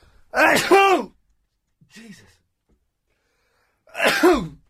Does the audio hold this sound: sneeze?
yes